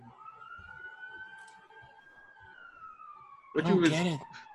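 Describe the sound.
An ambulance siren wails steadily in the background, a drawn-out tone that drifts slowly in pitch, before a loud burst of speech cuts in over it near the end.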